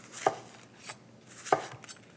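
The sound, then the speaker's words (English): A knife quarters peeled onions on a cutting board in a kitchen: two sharp, crisp thunks of the blade hitting the board, with a few softer slicing cuts in between. No talking. “I'm just gonna quarter some peeled onions.”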